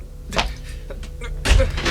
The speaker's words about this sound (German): Wir kriegen die Tür nicht auf.